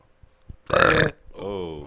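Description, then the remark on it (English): A loud, gurgly wet burp after drinking milk bursts out, followed after a brief pause by a longer, tonal voiced rumble trailing off. “Got that milk is burp. That sounds wet milks.”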